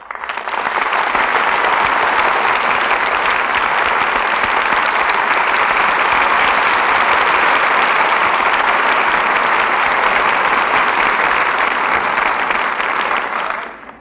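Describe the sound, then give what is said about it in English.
A sustained burst of loud studio audience applause on a Columbia Broadcasting System broadcast, before station identification, a dense wash of many hands clapping at a steady level for about thirteen seconds before quickly fading out. “applause for station identification.”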